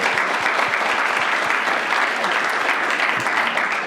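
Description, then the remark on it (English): Sustained applause from a group, a dense, steady patter of many hands clapping at once with no pauses, fairly loud throughout. “That's like worthy of a round of applause.”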